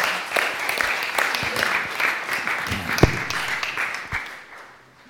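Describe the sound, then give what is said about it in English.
A crowd applauds people who have just shared, with dense, overlapping claps forming a steady bright wash, a few sharper individual claps standing out, before the applause gradually thins and fades away. “And yeah, can you give them a round of applause for sharing, because they were very nervous.”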